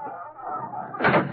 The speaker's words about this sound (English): Smoke come from back room in there. It's coming up through that rug. I'll pull it back. Trap door.